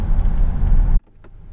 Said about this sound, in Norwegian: Sånn, da stoppet bilen her på et eller annet sted, som vi midt I en gate.